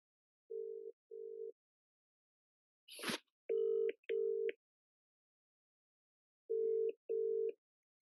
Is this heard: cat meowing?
no